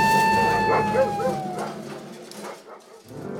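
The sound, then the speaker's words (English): Excitable golden retriever dogs bark and yip in quick, overlapping bursts as they get off leash, fairly loud, with a high whining tone running through the first half before the yapping trails off. “My dogs! They're getting off leash! No, dogs, don't run into those talking bushes!”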